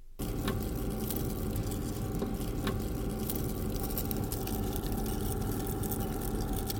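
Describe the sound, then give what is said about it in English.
A dense, steady crackle of countless tiny overlapping crunches from worms eating polystyrene, with a low rumbling undertone and occasional sharper clicks. No one speaks. “Are you hearing that ASMR crunching right now?”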